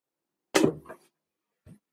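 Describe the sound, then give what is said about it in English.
A desk drawer bumps with one sharp, hollow knock and a brief rattling decay, then a faint small tap a moment later. No one speaks. “It was my desk drawer.”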